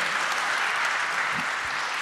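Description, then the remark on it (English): A large crowd claps steadily and densely, a continuous wash of applause that stays loud and even for the whole stretch, with no talking over it. “Just as you are clapping, so wie ihr gerade klatscht, just as you are excited, so wie ihr aufgeregt seid,”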